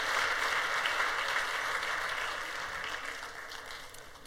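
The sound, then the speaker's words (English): A large audience at a church worship service claps steadily together for the children attending. The applause is a dense, even wash that gradually tapers off slightly toward the end, with no voices standing out. “Let's give a round of applause to all of our kids who are with us during worship.”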